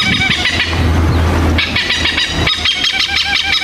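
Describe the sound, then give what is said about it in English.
Loud, harsh hornbill calls with a nasal, honking tone, repeating in quick rhythmic bursts over a low, steady rumble, dominant throughout. “Yeah, a hornbill literally makes the hair sound.”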